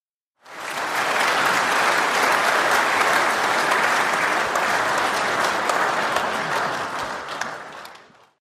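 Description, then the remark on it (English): A burst of applause from a group celebrating a two-year anniversary, dense overlapping claps holding steady at a loud level for several seconds before tapering off at the end. “I think we deserve an applause.”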